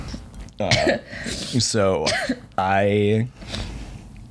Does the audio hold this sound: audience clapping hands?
no